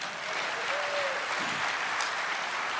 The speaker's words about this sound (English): He comes to us all the way from Harare, Zimbabwe. That all by itself deserves some applause.